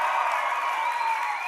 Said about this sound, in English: Everybody clap for him again. It's his birthday.